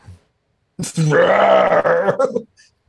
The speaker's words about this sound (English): Something breathing underwater. It's a monster.